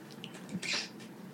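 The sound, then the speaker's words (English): A single short, muffled sneeze bursts out about halfway through, a quick hissing blast against a quiet background with no talking. “Gonna sneeze.”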